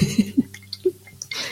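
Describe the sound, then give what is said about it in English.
A wet slurp of a cup of tea: a few short gurgling sips followed by a breathy sucking rush of air and liquid at the end, with no talking. “I'm going to have a slurp of my tea before we start.”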